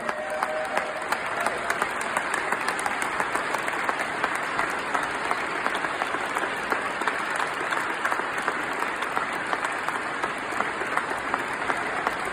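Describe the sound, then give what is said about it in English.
Sustained applause from a large audience, a standing ovation for a World War II veteran before he leads the Pledge of Allegiance, fills the whole stretch: a dense steady wash of many hands clapping at once with faint crowd murmur underneath, evenly loud from start to finish. “He received a standing ovation before he began, and you'll hear that too, but the cheering really intensified once he finished.”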